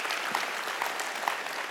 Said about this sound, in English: Come on, can you clap your hands if you're thankful for that today?